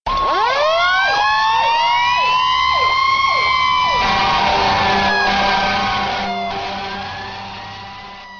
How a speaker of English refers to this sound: When you hear those sirens, do you say to yourself, "Wish I could do that"?